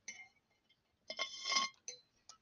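household object, glass clinking

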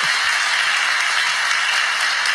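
crowd, applause

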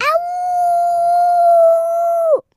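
animal, animal howling

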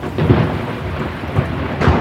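nature, thunder crack

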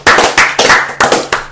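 crowd, people clapping

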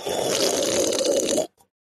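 food or drink, slurping a drink

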